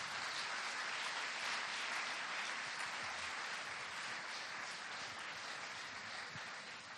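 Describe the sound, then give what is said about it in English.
Steady, dense applause from a large audience for a woman as she heads up to the front, many hands clapping at once in a continuous wash that holds evenly throughout and eases slightly toward the end. “Give her a round of applause as she heads on up.”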